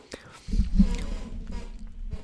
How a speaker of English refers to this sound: Gotta take a couple sips for the people.